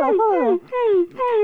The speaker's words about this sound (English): Interior barn, early evening. Connor places Taylor in his pen. The pup begins to cry.